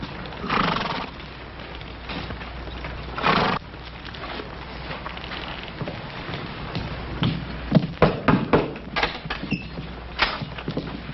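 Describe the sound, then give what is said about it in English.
Several horses of a detail of mounted soldiers clip-clop over the ground, irregular at first, then a busier cluster of sharp clops as the detail halts, with a horse's whinny mixed in. “Detail, dismount. Stand to your horses.”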